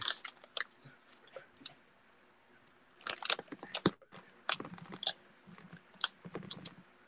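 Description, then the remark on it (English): Wet mouth smacking from someone chewing, with irregular bursts of sharp clicks and smacks separated by brief pauses. It's fairly quiet overall, with no talking. “We're smacking.”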